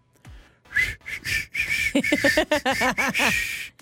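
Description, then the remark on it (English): Someone tries to whistle but mostly produces breathy, airy blowing with only a thin, wavering tone, in several short bursts that break into squeaky voiced sounds toward the end. “We tried to whistle.”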